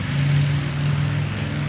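A Harley motorcycle passing by the house rumbles with a deep, steady, throaty engine drone that holds at an even loudness throughout, with no voices.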